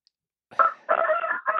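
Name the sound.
rooster crowing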